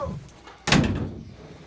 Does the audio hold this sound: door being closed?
yes